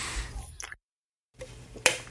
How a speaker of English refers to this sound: Yeah, sorry. I was chewing whenever you stopped.